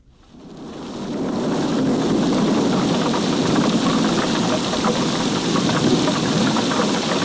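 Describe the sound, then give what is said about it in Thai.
Heavy rain pours down in a dense, steady roar that swells in over the first second and then holds loud and constant, with a low rumbling undertone and no voices. “ฝนหาใหญ่ก็ตกลงมาเหมือนที่กรมอุตุพูดว่าช่วงนี้ฝนจะไม่ตกเป็นการแกงหม้อใหญ่”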